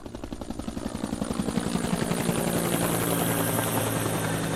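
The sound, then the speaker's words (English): A NASA helicopter carrying infrared equipment passes overhead, searching from the air for burial sites, its rotor thumping in a fast, steady chop that swells louder as it draws near and holds a broad, roaring wash. No voices are heard. “NASA even sent a helicopter over with infrared equipment, hoping to help locate the burial sites by air.”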